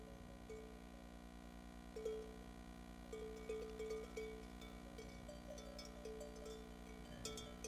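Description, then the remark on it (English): Many small sheep bells on a grazing flock of sheep in Macedonia clank and jingle in an irregular, overlapping pattern as the flock moves slowly, steady with no voices. “That's actually current sheep bells in Macedonia.”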